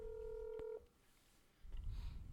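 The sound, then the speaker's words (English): A touch-tone phone key sounds a single steady dialing beep for just under a second as someone dials a call, clear, followed by quiet low rumble and handling noise. No one speaks. “Phone police. Got me calling people.”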